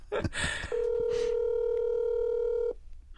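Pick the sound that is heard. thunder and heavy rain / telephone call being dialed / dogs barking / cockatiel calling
telephone call being dialed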